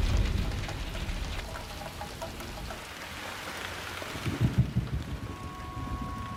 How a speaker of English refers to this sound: There was a storm. It was an accident. We had an accident. And we got stuck and we couldn't get out. We couldn't get out because of the storm.